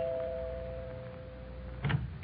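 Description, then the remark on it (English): A doorbell at the new home of Alan and his wife Sue rings at Christmas with a steady, sustained tone that hums for nearly two seconds before cutting off, followed by a brief muffled thump near the end. No one speaks. “So here I go, ringing their doorbell.”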